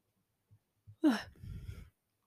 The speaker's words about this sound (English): I'm yawning because I only yawn whenever I'm recording.